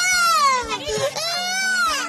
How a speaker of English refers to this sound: Children scream for their mother